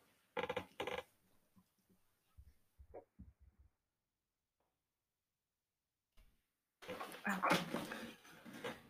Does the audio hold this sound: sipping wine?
no